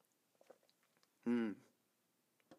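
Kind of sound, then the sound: food or drink, sipping coffee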